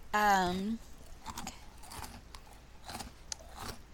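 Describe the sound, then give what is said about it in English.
Crisp crunching as someone bites into and chews a crunchy sweet dessert item from a bakery, with a series of irregular crackly chews following a brief voiced murmur at the start. “Now you're getting the full chew.”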